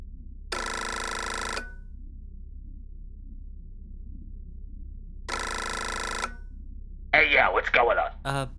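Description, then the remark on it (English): A telephone rings twice through the line after a number is dialed on a rotary phone, each ring about a second long with a long pause between, followed by a brief burst of a voice answering at the end. “Let me dial this up here on this rotary phone that I have.”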